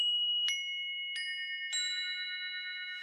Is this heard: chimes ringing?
yes